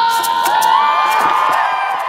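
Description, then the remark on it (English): A large crowd at a climate rally in 2019 cheers and whoops continuously, with overlapping high-pitched shouts and voices forming a loud, sustained roar throughout. “One of the biggest crowds was at the climate rally in 2019.”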